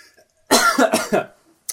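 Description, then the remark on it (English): A loud burst of harsh coughing, three or four rough hacks in quick succession, followed by a short pause and a brief breathy gasp at the end. “Not only am I coughing.”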